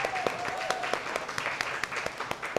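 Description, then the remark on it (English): At a Second Cup café, a crowd applauds Second Cup, whose proceeds go to help fight human trafficking, in a brief round of clapping, dense overlapping claps with sharper individual hits standing out, steady and moderately loud throughout, with a faint tone sliding briefly at the start. “So we can all give a round of applause for that.”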